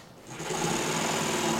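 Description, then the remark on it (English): A power saw whirs steadily through wood, cutting it to build an air car frame: a loud, continuous motorized buzz that starts after a brief moment of quiet and holds an even drone to the end, with no voices. “It seemed safest to let my dad handle all the sawing.”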